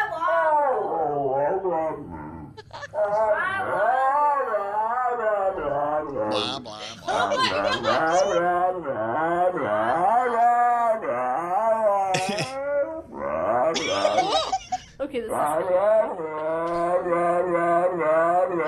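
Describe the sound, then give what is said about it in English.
A dog makes long, wavering, talk-like whines and groans, its pitch sliding up and down in bursts almost like speech, nearly continuous with brief pauses, as it repeats its owner after he talks. “So we all have that friend that repeats you, like, you know, after you talk and they go, nah, nah, nah, nah, nah.”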